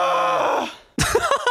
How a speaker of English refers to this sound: Yawn. I yawned. That was a scream. You scrimped. Yes, I have scream yawns sometimes.